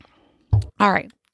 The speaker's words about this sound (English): So I'm going to sip my coffee and you think about that for like a second.